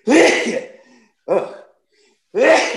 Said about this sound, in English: Excuse me. As the old people would say, when you sneeze like that, you must be telling the truth.